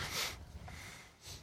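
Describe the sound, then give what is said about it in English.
A single sharp, hissing sneeze bursts out loudly, then after a short pause a softer breathy exhale follows. No one speaks. “Sorry, I don't know what happened. I rarely sneeze once.”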